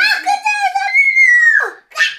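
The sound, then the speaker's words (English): A child's high, strained voice imitates a rooster crow: a few quick syllables rise into one long, sustained squealing note, followed by a short breathy burst. “He can sound like a rooster. Cock-a-doodle-doo. Say cock-a-doodle-doo.”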